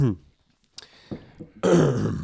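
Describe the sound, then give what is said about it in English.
A loud throat clearing: one raspy, gravelly rumble lasting under a second, preceded by a brief trailing voice and a few soft clicks and breaths. “Clear your throat.”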